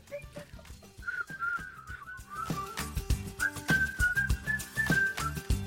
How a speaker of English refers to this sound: hey, that's not whistling. You can't just like blow. I can't whistle. Like making noises, you're not whistling.